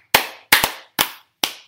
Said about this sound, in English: I think he deserves an applause.